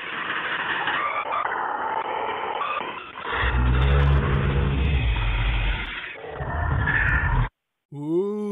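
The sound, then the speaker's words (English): Loud, harsh static hiss from the Local 58 series' phone-line message, with a deep, rough growling or breathing-like rumble swelling in the middle, then a brief dropout and a warbling electronic tone at the end. “And I'm pretty sure I can hear something growling or breathing in there.”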